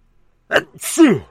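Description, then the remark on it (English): A single loud sneeze: a short sharp intake, then a breathy burst that trails off into a falling voiced 'choo' sound, with no other sounds around it. “It's making me sneeze.”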